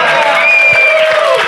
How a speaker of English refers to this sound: No, we get a real clap. We usually do this.